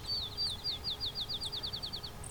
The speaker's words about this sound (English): Here we go. It's very low pitched for a sparrow.